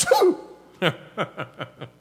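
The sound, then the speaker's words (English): A person fakes a sneeze with a sharp, breathy burst, then a series of five short rhythmic bursts that sound like chuckling. It is moderately loud, with no other talk. “Sneezes all over him.”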